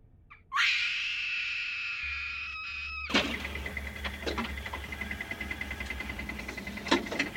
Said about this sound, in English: Komal could now scream, and she let the full force of her terror bounce against the walls of the cave